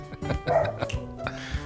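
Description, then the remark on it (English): A dog named Pepper barks several times in short, sharp bursts, spaced irregularly over a couple of seconds, with a faint tonal background hum. “Pepper just wanted to say hi.”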